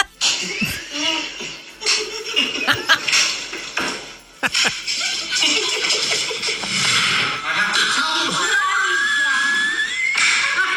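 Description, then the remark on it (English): A handful of sharp, loud smacks of a tortilla hitting a face, spaced a second or so apart, as two people holding water in their cheeks slap each other with a tortilla in a challenge, surrounded by shrieking, laughing and excited voices. “And then the two of you slap each other with a tortilla.”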